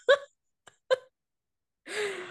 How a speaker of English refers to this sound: Crying again.